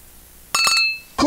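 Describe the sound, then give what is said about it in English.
Beer glasses clink together in a toast at 6:13 in the morning, a couple of quick bright taps that leave a clear ringing tone hanging for half a second, followed by another knock at the end. “there's a beer in the fridge. Here we go. Oh, yeah. Cheers.”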